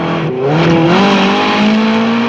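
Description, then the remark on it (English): A Lotus Esprit sports car engine revs hard during a Roger Moore James Bond film chase scene, climbing in pitch, a loud, continuous roar with a brief dip before it surges again, no voices present. “I mean, regardless of what modern Bond chase scenes are, that chase scene with the Lotus is amazing.”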